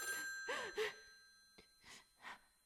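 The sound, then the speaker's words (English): A telephone bell rings steadily and fairly quietly while someone lets out several audible gasps and sighs. “Oh, let it ring. Let it go on ringing.”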